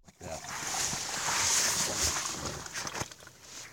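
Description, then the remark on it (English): Liquid poured from a bottle: a steady, bright splashing stream lasting about three seconds. It swells, holds, then tapers off with a few irregular gurgles near the end. “One of Nina's recordings starts with a pour from a bottle.”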